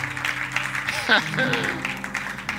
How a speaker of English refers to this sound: Clap your hands for God. Oh, some of you can't even clap because you are like.